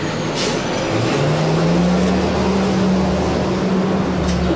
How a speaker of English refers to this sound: Loud truck. Big truck. It's going to be loud here for a second.